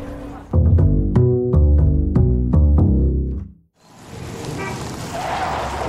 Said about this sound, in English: I'll hail a cab. We'll be there in no time. Taxi?